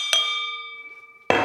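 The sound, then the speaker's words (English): A single bright clink of crystal glass rings out with a clear, sustained tone that slowly fades over a second, followed by a sudden scraping burst at the end. “And watch the crystal here.”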